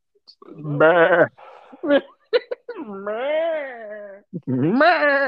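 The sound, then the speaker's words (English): Several wavering sheep bleats come one after another, fairly loud, some short and one long, drawn-out cry in the middle, with no other sounds around them. “You might turn into a sheep.”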